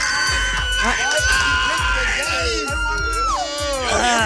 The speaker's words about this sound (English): Why is Amy Schumer screaming?